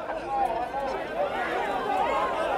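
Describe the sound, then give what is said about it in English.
A crowd at a Black Lives Matter protest facing police boos a Trump supporter yelling in the middle of the protest, many voices blending into a sustained, wavering jeer that stays fairly loud and dense for the whole stretch, with no single voice standing out. “He's now getting booed.”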